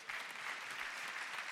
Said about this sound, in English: Yeah, that's so good. And y'all can clap for that. That's good.